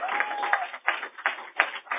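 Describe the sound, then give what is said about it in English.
An audience gives a clap offering for the word of God during a sermon, a dense wash of many hands swelling in steady waves roughly three times a second, with a faint sustained tone underneath at the start. “Somebody give a clap offering for the word of God.”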